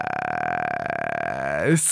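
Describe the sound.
A single long, voiced burp, close and fairly loud, holding a steady droning pitch before sliding downward and breaking off at the end; it sounds slightly muffled.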